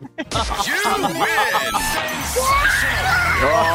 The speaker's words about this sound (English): Oh, yes. Oh, do you know what? Hearing your kids scream in excitement makes it all worth it.